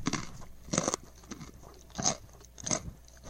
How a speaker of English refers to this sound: Hey, they do stay crunchy, even packed in milk. Ow, my teeth.